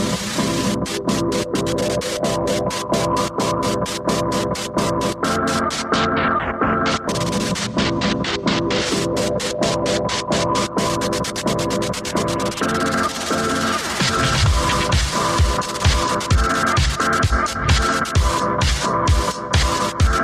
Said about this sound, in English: It's actually quite interesting because what's going on there, that white noise is sort of being used in place of cymbals and also to accentuate the pump of those sidechains or what have you.